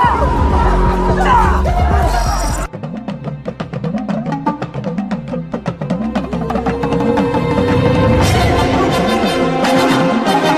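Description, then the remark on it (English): A large crowd cheers and whoops loudly and continuously as a ship lands in front of them, welcoming their prince home, the roar mixed with booming music and rhythmic chanting that swells toward the end. “The ship lands in front of the crowd, waiting to welcome their prince home, surrounded by their home in all its beauty.”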